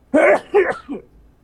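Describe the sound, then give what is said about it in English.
A sneeze breaks out in three quick, harsh bursts. The first two are loud and strong, and the third is weaker and shorter. No one talks. “Bless you, what the fuck?”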